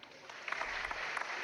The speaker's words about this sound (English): All the listeners. Okay, give them a round of applause.